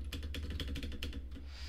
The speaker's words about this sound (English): Is this really, loud on the audio, my clicking? I bet it is. I can't hear it.